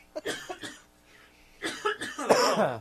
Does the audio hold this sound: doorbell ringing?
no